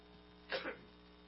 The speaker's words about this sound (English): One of these days soon, we're going to stop this coughing, huh?